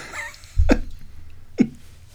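Two short, abrupt burps, roughly a second apart, each a quick guttural pop over faint background noise with no talking.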